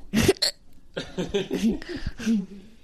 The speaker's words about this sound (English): Somebody has the hiccups.